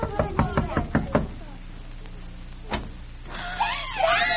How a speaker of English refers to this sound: Oh, just knock at the door and you'll find out. Go ahead, knock.